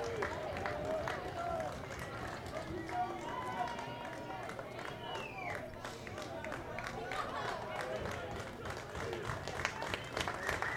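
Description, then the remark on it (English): A baseball stadium crowd claps in quick, staccato bursts, urging strike three on a two-ball, two-strike count, over a steady wash of murmuring voices, the sharp claps repeating unevenly throughout. “Staccato clapping in the stands.”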